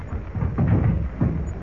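A loud, continuous roar of a tropical storm at sea, with mountainous waves surging and crashing as they toss the ship Juanita. The low rumble swells twice in a short burst, and no voices are present.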